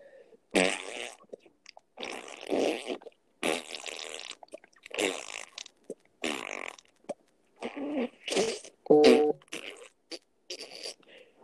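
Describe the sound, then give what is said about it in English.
A person blows a long series of wet, sputtering mouth fart noises to entertain listeners, one after another in quick bursts with short pauses between, loud on the mic. “Well, to entertain you all, I will make fart noises.”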